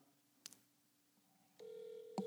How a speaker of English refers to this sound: It's he just called me back. It's ringing.